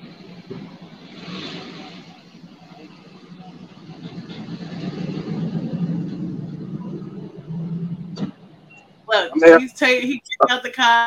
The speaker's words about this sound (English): Look, he's taking out the car.